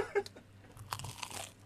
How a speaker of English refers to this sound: Can we just get the crunches audible? Can you bite a slice?